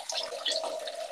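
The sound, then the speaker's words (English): A person urinates into a toilet, a steady stream of liquid splashing into the water, fairly loud for a brief moment, with no voices. “As we open back up with …'s famous piss in the world and cue the flush”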